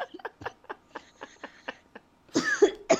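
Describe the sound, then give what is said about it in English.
A string of short, rhythmic hacking coughs builds into a louder, harsher coughing fit at the end, with no talking. “Oh, here comes the cough.”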